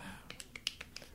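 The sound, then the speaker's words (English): A rapid run of about six soft, crisp finger snaps in a slightly uneven rhythm over roughly a second, made by a person trying to remember an actor's name, with no voices. “Clap with one hand.”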